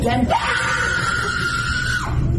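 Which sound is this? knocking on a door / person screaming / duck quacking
person screaming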